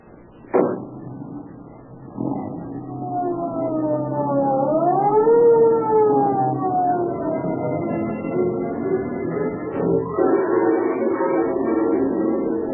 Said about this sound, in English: Although the police car starts its journey with sirens screaming, it enters the neighborhood where Edna lives in silence.